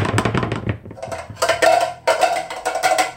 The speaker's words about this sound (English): While that was very therapeutic, we have to stop banging these pans. It's not helping.